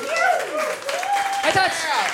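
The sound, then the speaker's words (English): An audience breaks into steady applause for a guest having sold out the SSC Arena twice this year, a dense wash of clapping mixed with cheering and whooping voices, holding a fairly even loudness throughout. “Say round of applause for that.”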